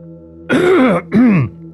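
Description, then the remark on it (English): A wizened, hunched-over dockmaster holding a can of soda gives two loud, rough coughs in quick succession, raspy with a strained voiced edge, the second a bit shorter than the first, with no talking around them. “you see this Dockmaster, wizened man that's hunched over, coughing loudly with a can of soda in his hand, and you just overhear their conversation.”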